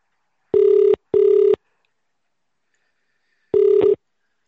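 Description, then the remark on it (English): A telephone ringing tone on a call to another person's phone: a double ring burst, a pause of about two seconds, then another ring starting. Steady electronic tone, clear, with no talking. “All right, it's ringing.”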